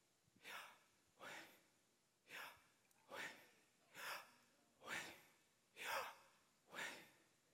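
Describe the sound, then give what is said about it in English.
Eight airy, breathy pulses in a steady rhythm, fairly soft, like someone breathing in and out deeply and audibly, with no talking. “Have you ever found yourself deep breathing?”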